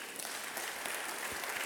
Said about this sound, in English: I thought you would clap for Jesus.